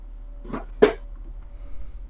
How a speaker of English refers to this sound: His dog's barking. He can't talk. Ah, okay. I got it. He must see somebody outside that he needs to go bite.